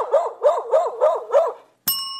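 A dog barks five times in quick, even succession, loud, before a brief pause and the sudden start of a sustained musical tone.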